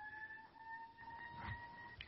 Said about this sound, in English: Oh, it's a siren. It sounded like a meow for a second. Oh, yeah, it's going right down the street.